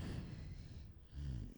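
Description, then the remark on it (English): Two rough, low snoring breaths, each a raspy, rattling drone under a second long, with a short pause between them; faint and with no talking. “You're doing it again. You're snoring over there.”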